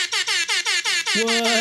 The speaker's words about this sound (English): All right, so that is the best time of the episode because I get to push this button that this really cool app says it's a rap air horn. So we're pretty much mix artists when that goes on.